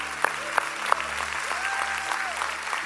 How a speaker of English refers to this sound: Come on, let's clap for everybody that said yes.